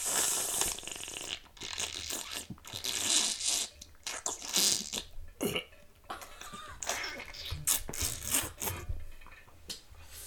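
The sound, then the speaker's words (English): Wet ASMR-style sounds from a boxed water carton: irregular gurgling, sloshing and crackling bursts, loud and intimate, with no talking. “Oh, we got box water. Doesn't do the same.”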